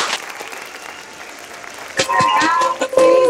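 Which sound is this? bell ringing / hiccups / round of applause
round of applause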